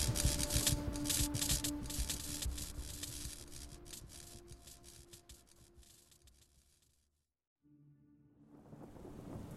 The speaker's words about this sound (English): Wind and rain surged through the nearby window, the perpetrator's most likely egress. Slinking up next to its edge, I peeked outside, rain streaking my face as the wind blew my hood back.